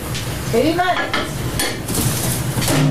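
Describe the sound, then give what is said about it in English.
A plate holding a melting substance clatters and scrapes as it is slid into a microwave to be cooked for 2 minutes, with a few moderately loud clinks and knocks of kitchenware over a steady background hum. “Looks like he's putting it in for 2 minutes, which I think is too long for poop.”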